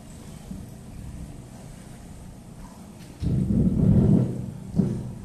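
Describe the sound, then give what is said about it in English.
A tanker ship moving along a channel that is the new route for cruise ships: its deep, steady engine rumble drones low, then swells noticeably louder partway through and keeps churning, with no voices over it. “It's a tanker, but it's going along the channel that is the new route for the cruise ships”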